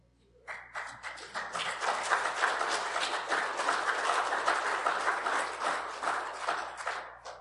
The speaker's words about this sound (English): We should all be standing and cheering Him on because of that. We should be clapping our hands for Jesus Christ.